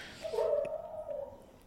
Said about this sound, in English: My dog having a bad dream, guys.